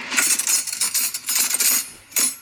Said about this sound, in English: Okay. I feel like that sounds like cutlery. You're right. Grabbing cutlery. The answer is just grabbing cutlery? Is that not the game? You're just frantically grabbing cutlery, though. I was grabbing forks for the kids and I.